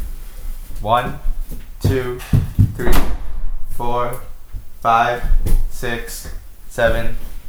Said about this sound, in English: Now you have to close that door.